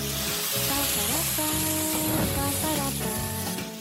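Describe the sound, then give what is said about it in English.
A hot pan sizzles loudly and steadily as it flares up, with a broad, crackling hiss that swells briefly in the middle, while tonal music plays underneath throughout. “This is gonna go like a big fireball.”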